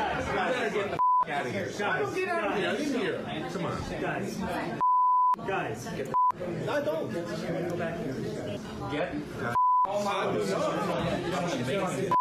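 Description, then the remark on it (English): A steady, pure censor bleep cuts in about four times over speech from a cell phone video of a scuffle at a country club bar involving Fox News host Tucker Carlson. The talk is abruptly muted around each tone. The bleeps are loud and clear. “Let's enjoy the heavily censored audio together, shall we?”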